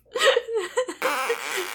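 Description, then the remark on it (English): A few short, buzzy, fart-like blurts in quick succession, then a longer wavering, rumbling tone over a steady hiss of background noise. Moderately loud, with no talking. “That's just a fart noise.”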